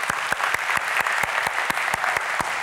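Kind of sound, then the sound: crowd, audience round of applause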